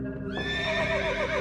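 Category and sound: animal, horse neighing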